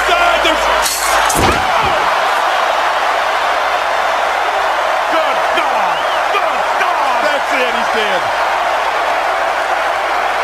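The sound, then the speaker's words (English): A body crashes down hard in one loud, heavy slam near the start as Macho Man Randy Savage jumps off a chair with a flying elbow, followed by a continuous roar of crowd noise and scattered shouting. “Macho, I mean Santa, come down off the chair. Don't jump, you'll scare the children. Flying elbow!”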